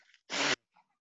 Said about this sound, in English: But I have to blow my nose.